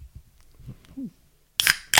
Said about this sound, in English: Speaking of... cracking cans?